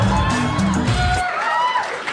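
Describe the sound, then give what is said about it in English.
A crowd in Portland, Oregon cheers loudly and steadily, a dense roar of many voices with higher whoops and shouts rising above it. A deeper rumble sits under the first half before thinning out. “Yeah, well, you can hear it in the crowd.”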